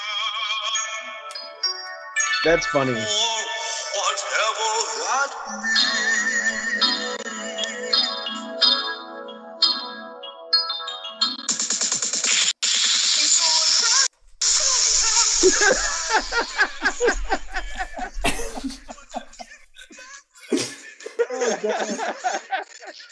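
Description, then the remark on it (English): A phone ringtone plays a melodic song continuously for over twenty seconds, fairly loud, while people talk and laugh over it. “It's still going! Oh, we're going to the fucking chorus, motherfucker.”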